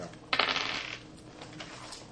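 Small dice rattle and clatter across a hard table surface in a quick burst during a tabletop game session, then settle with a few faint ticks. It sounds fairly quiet, with no voices.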